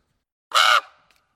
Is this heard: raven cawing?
yes